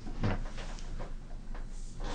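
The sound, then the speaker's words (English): Soft papery scraping and swishing, a few brief rustles spread over a couple of seconds, fairly quiet, as a note is slid under a door. “Somebody just passed us a note under the door here.”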